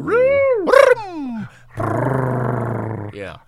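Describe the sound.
A voice imitates a menacing growl: a few rising and falling snarling vocal sounds, then a sustained rough, low growl lasting over a second, fairly loud.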